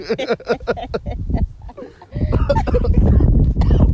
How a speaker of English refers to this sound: They smoking weed. I'm about to start coughing.